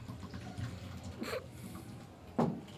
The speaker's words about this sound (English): Do the long pour. That's what you're supposed to do for Sidra, like the Spanish style. The Sidra. This? Yeah, you do the long pour. They, like, give it carbonation. They, like, release the CO2.